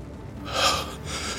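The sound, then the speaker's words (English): A breathy gasp swells up sharply, then eases into a long, heavy exhale, like someone catching their breath in relief. There is no talking. “Lucifer fell forward onto his hands, gasping in relief.”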